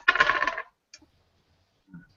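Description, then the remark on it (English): Physical dice clatter and rattle across a hard tabletop for about half a second, rolled to randomly determine an orc character's age in a tabletop role-playing game, followed by a couple of faint clicks as they settle. No one speaks. “And I got physical dice here. I'm going to randomize everything here.”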